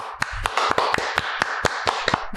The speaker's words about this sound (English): You applaud for that.